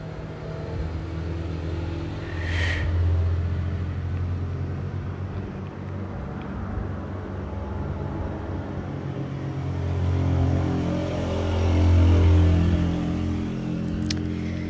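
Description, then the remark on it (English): Steady road traffic of motorcycles, cars and trucks rumbles past, a low droning engine noise that swells and fades as vehicles go by, with one rising rev near the start and louder passes toward the end. “Motorcycles, cars, trucks. These are, feats in engineering.”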